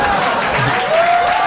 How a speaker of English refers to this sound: Oh, thank you. Look, that's fine. I appreciate it. Listen, y'all don't gotta clap. It's cool.